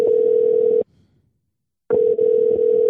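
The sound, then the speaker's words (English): A telephone ringing tone sounds in two steady, loud bursts separated by a short silent pause, heard clearly on its own with no voices. “Yep, it's ringing twice quickly.”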